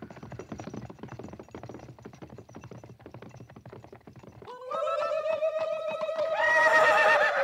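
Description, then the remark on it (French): Hooves clip-clop in a steady, rapid patter for several seconds. Then a horse lets out a loud, drawn-out neigh that climbs into a shrill whinny at the end. “Mais qu'ils descendent de cheval et viennent vers moi.”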